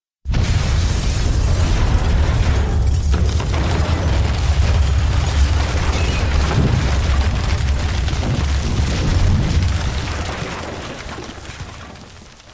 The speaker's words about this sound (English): I didn't have far to look. I saw the fireball rise out of Vale's boat. Harry! The heat hit me and I felt my skin start to burn. A moment later, the blast pushed me into the water.